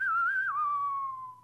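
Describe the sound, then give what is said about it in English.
A lone, clear whistle holds a wavering note, then drops to a lower pitch that slowly slides down and fades, like a brief showdown-style melody, over a faint low hum. “You can kind of hear the whistle, right?”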